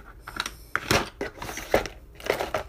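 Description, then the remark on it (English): A pencil being sharpened, with a series of gritty, crunching scrapes in uneven bursts as the blade shaves the wood. No one is talking. “We're gonna sharpen a pencil, and we're just gonna use that.”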